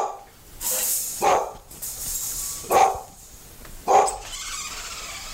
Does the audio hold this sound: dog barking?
yes